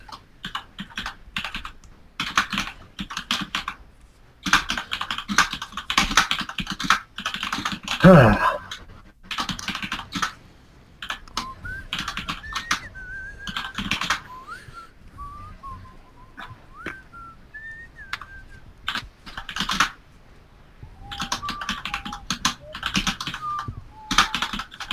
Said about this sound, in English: This must be great audio. Just whistling and typing.